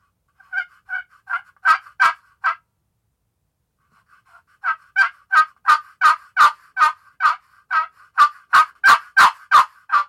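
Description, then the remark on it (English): A wooden turkey call made of soft catalpa wood sounds out a rhythmic series of yelps, a short run of about six notes, a pause, then a longer string that grows louder and sharper, clear with no talking. “So this is the catalpa I'm going to play here for you first, and I'm just going to do some yelps to start off with, real nice and quiet.”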